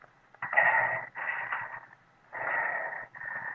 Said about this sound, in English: I lay back in bed, gasping and waiting for my pulse to get back to normal.